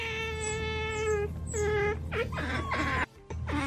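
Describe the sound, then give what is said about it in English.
Otters making cute high-pitched squeaking calls: a long, steady whine, then a shorter one, followed by a rapid series of wavering chirps and squeals, fairly loud and with no talking over them. “Oh fuck, I didn't know they made cute noises.”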